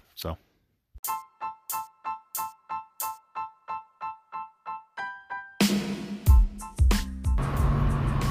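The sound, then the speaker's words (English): Inside a car, a steady electronic chime beeps about fourteen times in quick, even rhythm, then gives way to a loud, continuous engine and road rumble. “All right, everybody, it's our favorite segment, Relax and Take Notes, and we're doing this from my car right now.”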